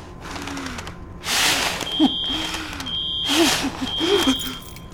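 A high-pitched fire alarm beeps in repeated long, steady tones during a fire in an office, amid bursts of rushing noise and faint voices in the background.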